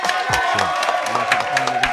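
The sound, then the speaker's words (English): An audience claps and cheers together for a producer who chopped up a sample in a beat battle, a dense wash of steady applause with a few whoops and shouts mixed in, fairly loud, lasting the whole moment. “Can we clap it up one time for that, please?”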